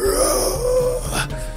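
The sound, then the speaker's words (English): A voice imitates the horrible screech of a huge monster: a loud, raspy, strained cry held for over a second, with a throaty growl underneath and a harsh, wailing edge that breaks up near the end. “And this is a horrible screech, as big as this creature is.”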